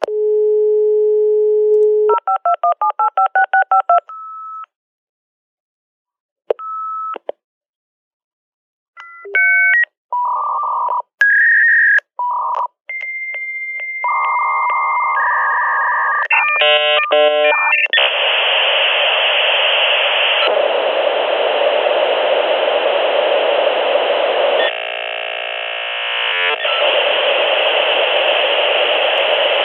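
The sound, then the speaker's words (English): A dial-up modem connects: a dial tone and a quick run of keypad tones, then warbling handshake beeps and chirps that give way to a long, loud hiss of static rushing noise. “Of course, if you're under 30 years old, you might not know what that is, but that's a dial-up modem. That's how we old-timers used to have to connect to the internet.”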